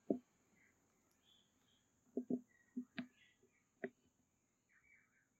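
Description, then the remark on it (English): Birds outside chirp in scattered short bursts over a steady high-pitched hum, with a few sharp knocks and thumps standing out; no one speaks. “And the birds are joining.”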